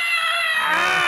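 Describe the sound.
A voice imitates the scream of terror of a character transforming in an imagined Cronenbergian body-horror Animorphs reboot: one loud, high-pitched "ah!" held for about a second, unbroken, with no other talking.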